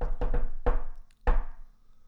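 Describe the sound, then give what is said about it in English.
Knocking on a door in a familiar rhythm: a quick run of raps, a pause, then one more knock, and the pattern stops short without its closing pair of knocks. No voices. “It's like if somebody came up to your door and just.”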